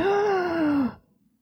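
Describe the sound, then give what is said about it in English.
A voice imitates heavy mechanical respirator breathing with one loud, drawn-out, groaning exhale that slowly drops in pitch and cuts off after about a second, followed by near silence. “To greet us all with his iconic breathing.”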